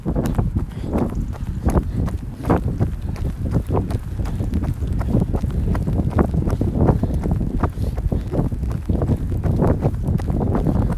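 wind blowing

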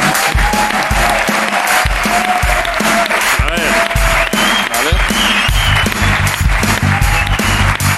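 applause

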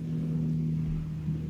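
helicopter flying overhead

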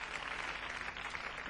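applause

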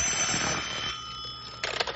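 telephone ringing

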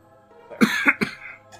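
throat clearing

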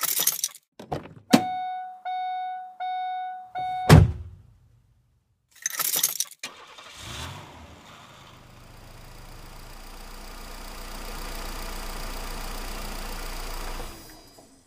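getting into car

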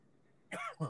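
coughing

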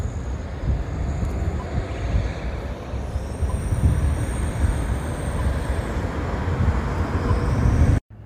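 street traffic

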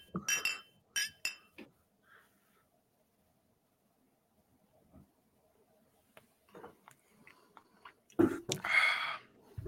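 glasses clinking together

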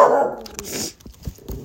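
dog barking

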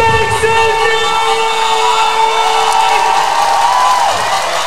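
arena crowd cheering

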